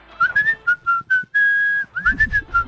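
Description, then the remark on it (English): A person whistles a short, bright melody: quick chirpy notes, one long steady held tone in the middle, then another run of lively notes with faint background rumble. “Like, I love the sound of someone whistling.”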